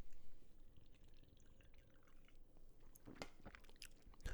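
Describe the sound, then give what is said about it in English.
Someone chugs a beer, a steady run of wet gulping and swallowing, with sharper liquid clicks and slurps near the end. No one speaks. “This Most Sober Beer Chug is for our friends over at Fresh Clean Threads.”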